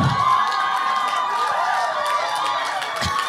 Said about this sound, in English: No, don't clap for that.